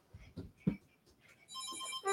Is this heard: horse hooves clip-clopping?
no